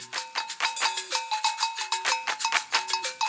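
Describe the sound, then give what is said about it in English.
A bright metallic bell strikes in a steady, repeating traditional rhythm adapted from Vodun shrine music, with sharp accented hits and sustained ringing tones between strokes, with no voices. “They added a bell here, a rhythm there, so that the Vodun adepts wouldn't say, we played it in the same way.”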